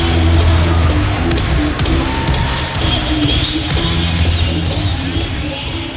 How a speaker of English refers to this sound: So not as powerful as the Bulls, but you hear the crowd in the beginning getting real into those O's.